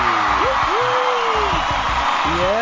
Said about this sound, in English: Yeah, hello there. Hello, thank you. Let's just keep those applause going because we've got a very special guest who's also co-hosting with me tonight.